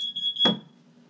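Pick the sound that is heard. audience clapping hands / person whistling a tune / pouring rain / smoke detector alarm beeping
smoke detector alarm beeping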